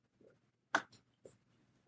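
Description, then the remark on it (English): A quiet sip from a drink taken while sitting at a desk: a soft sharp slurp followed by a couple of fainter gulping and swallowing noises, with no talking. “Excuse me, I had to take a sip of something.”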